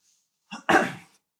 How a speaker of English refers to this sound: God, every time we start the first 30 minutes, I'm coughing up. It's gross. Just because you're doing a lot of talking, sorry about that.